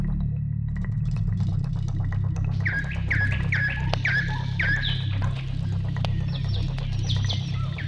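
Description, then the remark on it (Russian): A nightingale sings in a forest at sunrise, a series of clear, bright, repeated whistling and trilling phrases over a steady low rumbling background, starting after a few seconds of near-quiet. “Щелкал чародей леса соловей, и кажется, будто притихший лес только и ждал его первый трель.”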